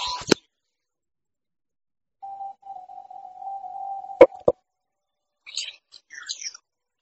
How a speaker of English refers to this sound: Dropping my phone and all kind of shit.